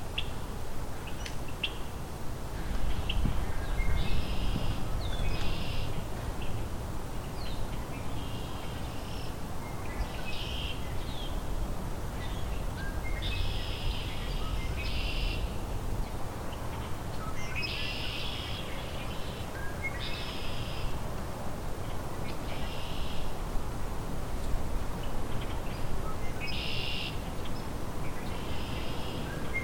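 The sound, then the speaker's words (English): Common grackles and red-winged blackbirds call and sing throughout, with repeated bright, buzzy bursts in a steady rhythm over a low rumbling background, several birds overlapping. “This is both common grackle and red-winged blackbird calling.”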